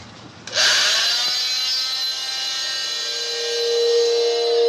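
During an autopsy examination of an adult white female's body, an autopsy saw whines to life and cuts steadily through bone, a loud, high-pitched buzzing grind with layered tones that holds for several seconds and rises slightly toward the end.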